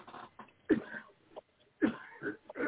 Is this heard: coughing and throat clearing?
yes